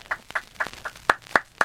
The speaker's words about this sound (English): Applause, applause from the gallery.